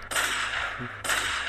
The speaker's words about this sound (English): Let me get my gunshots off one time.